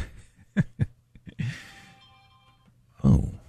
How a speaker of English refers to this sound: that was a kind of a crazy noise. Oh, somebody left their phone in here.